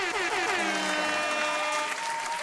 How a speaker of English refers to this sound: Also, … and … are actually going up to Lake Havasu, and they're going to be playing a show over there. So let's give them a great hurrah and applause.